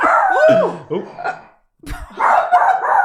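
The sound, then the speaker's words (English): A dog barks and yelps a few times, short sharp bursts with a brief pause between, mixed with some vocal noise in a studio. “We have two dogs in the studio today.”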